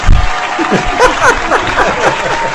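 A studio audience applauds in a dense, steady wash of clapping lasting a couple of seconds, with scattered laughs and whoops rising over it.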